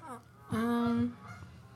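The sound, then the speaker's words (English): A goose gives a loud, drawn-out nasal honk lasting about half a second, preceded by a shorter, fainter call, during migration season, with no talking. “Don't mind the geese. It's migration season.”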